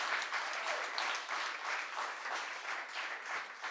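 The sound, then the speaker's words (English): An audience claps steadily to welcome a first-time storyteller to the stage, a dense wash of applause for several seconds at an even, fairly loud level without any pauses. “Big round of applause.”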